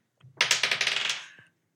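Dice, rolled for a perception check, clatter across a table in a quick burst of rapid, bright rattling clicks that tumble and taper off after about a second, with no talking.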